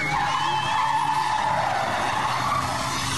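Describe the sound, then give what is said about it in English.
A car's tires screech in a long, continuous skid as it turns around to ram head on into a Garda police car in Cherry Orchard. The skid is loud, with engine noise underneath and a steady, harsh squeal running for several seconds. No one speaks. “The lads turn around and they ram head on into the Garda car.”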